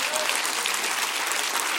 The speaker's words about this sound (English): Can you clap your hands and rejoice to that?